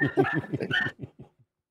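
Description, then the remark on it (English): A dog, agitated by its owner getting worked up, lets out a rapid burst of grumbling, yappy barks for about a second, then trails off into a few softer yips and silence. “He got so worked up, even his dog is pissed off about it.”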